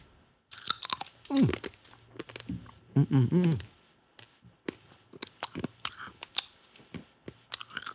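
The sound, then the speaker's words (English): Crunchy chewing of a stiff, roughly 20-year-old stick of gum, irregular brittle crackles and mouth clicks throughout, with a couple of brief hummed vocal sounds near the start. “That's a 20-year-old piece of gum.”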